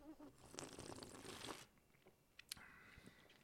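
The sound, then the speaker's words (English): A wet slurp of an extra dirty martini made with Belvedere organic vodka, extra dry vermouth and olive brine, lasting about a second, followed by a quieter pause and a few small mouth sounds or a faint glassy tap. “Let's give this a good slurpy slurp.”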